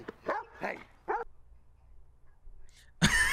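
A dog lets out three quick barks in a row at a man, followed by a quiet pause and then a sudden loud burst of noise at the very end.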